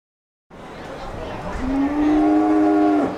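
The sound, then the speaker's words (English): A pregnant Holstein dairy cow in a pen at the Dairy Cow Birthing Center of the New York State Fair lets out one long, drawn-out moo that swells and then cuts off, over the steady noise of a fan blowing cool air and faint murmur of a watching crowd. “6 pregnant Holstein dairy cows from Patterson Farms in Auburn graze on hay in the pens as a fan blows cool air onto them and a watchful crowd waits to witness the miracle of life.”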